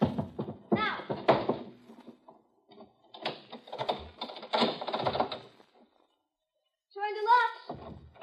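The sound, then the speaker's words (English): A heavy chair lying on its side just inside a door is shoved and dragged out of the way so the door locks can be reached, a run of clunks, bumps and scraping knocks over several seconds, then a short pause and a high creaking squeal at the end. “Now, you have to move that chair out of the way so he can get at the locks.”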